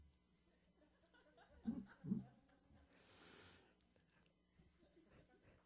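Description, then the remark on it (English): Heavy breathing into the microphone: a couple of short, low huffs followed by a long, airy exhale that hisses briefly, all fairly quiet with no talking. “Sorry, I'm just a heavy breather.”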